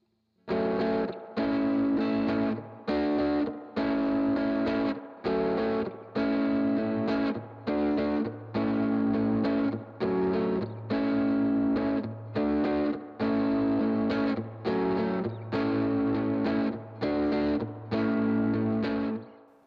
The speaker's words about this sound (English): Spring reverb is very important here, and its drippy repeats are very apparent during the quick chord slaps during the verse. We've set our volume to 40%, our tone to 60%, and our reverb to 60%. Let's give a listen.